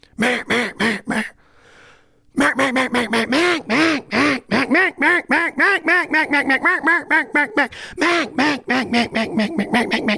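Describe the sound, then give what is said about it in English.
A duck call blown in loud, nasal quacks: a brisk burst of several, a short pause, then a long rapid run of many quacks that slow and fade slightly toward the end, with no talking. “I walk around all day doing that, and I'm in my mid-40s.”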